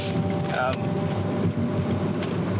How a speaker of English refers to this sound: Whoa, motorcycle just cut me off.